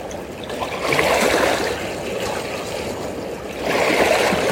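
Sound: flowing stream water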